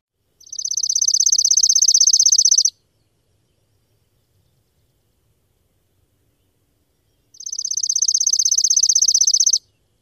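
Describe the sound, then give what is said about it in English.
Two fast, dry chipping sparrow trills, each a steady rapid run of high chips lasting about two seconds, separated by a long silent gap. “The trill of the chipping sparrow is nearly twice as long as that of any other species, and this can be a useful clue.”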